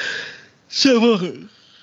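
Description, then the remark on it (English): A single yawn: a breathy intake followed by a drawn-out, voiced groan that slides downward in pitch and fades after about a second. “God, I don't know why I'm yawning.”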